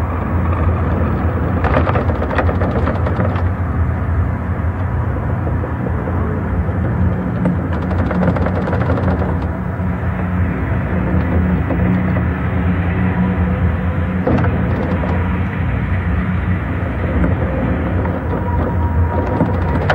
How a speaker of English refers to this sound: People would come in who weren't afraid of heights and then hear the sound and realize that from the 91st floor, holy crap, we're moving and the building is creaking and cracking.